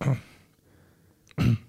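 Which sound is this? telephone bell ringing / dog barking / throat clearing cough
throat clearing cough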